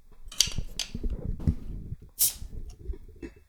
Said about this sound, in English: But I will do my best to get the bottle opening captured by the microphone. I'll eat the glass afterwards. What do you say we just crack it open, pour it out, give it a whirl?